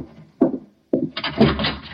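A door is answered and opened: two sharp clunks of the latch and handle, followed by a longer, rougher sweep of noise as the door swings open.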